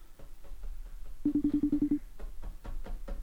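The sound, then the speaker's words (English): An outgoing phone call rings once with a steady electronic tone lasting under a second, amid muffled background clatter and faint voices. “Is that your phone?”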